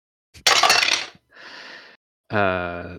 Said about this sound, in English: I'm rolling the metallic dice, the amethyst dice I have from Metallic Dice Games, and they keep rolling really high.